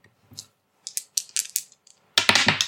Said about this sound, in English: Come on, dice, be nice.